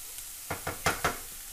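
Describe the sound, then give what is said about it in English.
One big onion grilling in a little olive oil over turned-up heat gives off a soft, steady sizzle, broken by four quick scraping strokes in an even rhythm as it is stirred around the pan. No one speaks. “we're just going to grill those, a little bit of olive oil”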